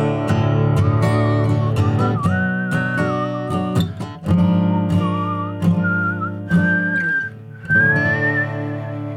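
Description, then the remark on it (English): Someone whistles a tune with their lips, a thin wavering melody that climbs higher toward the end, carried over steady strummed instrumental accompaniment with no talking. “You brought a second instrument with you. Yeah, but my lips were so dry and I couldn't really do it.”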